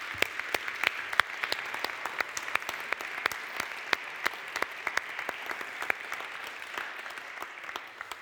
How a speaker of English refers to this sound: Can we give each other and them a big round of applause?